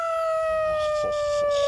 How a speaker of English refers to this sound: When the night dances in the moon and the wolves howl into the tree, they always howl the number 3.